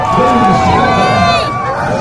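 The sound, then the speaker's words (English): A large crowd roars and cheers loudly and steadily for two seconds, a dense wash of voices with shrill, wavering shouts rising above the din. “Hear the roar!”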